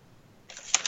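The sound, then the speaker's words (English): A few quick keyboard keystrokes, sharp bright clicks arriving in a short uneven burst after a moment of near silence. No voices are heard. “Sorry, I'm typing something.”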